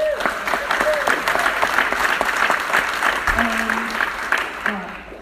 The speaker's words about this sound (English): And then also, looking around the room, I see some men folk here, so I think we need to give a round of applause to the blokes.